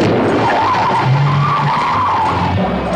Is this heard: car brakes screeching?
yes